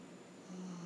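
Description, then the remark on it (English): A single low, droning snore rises partway through and holds steady, soft, with no voices around it. “please, with the snoring.”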